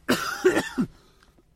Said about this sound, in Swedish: Vänta, jag måste hosta, mannen. Vi passar lite så jag får ut.